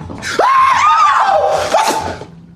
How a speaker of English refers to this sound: and she is upset, and then he sees the lobsters and he screams.